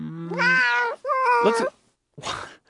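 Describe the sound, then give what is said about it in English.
Two drawn-out, wavering yowls like a sick cat, loud, with strained harmonics, followed by a short rough burst of noise. “It's like a sick cat.”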